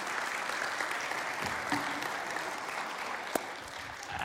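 A crowd applauds steadily during a church service, many hands clapping in a dense, continuous wash of sound at an even level, with one sharper clap standing out near the end.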